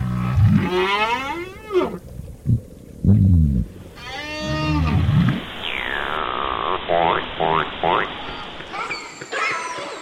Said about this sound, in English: Day and night, whales, fish, and other species are singing, using their sounds, grunts, whistles, drumming, echolocation to forage, to find mates, to avoid predators.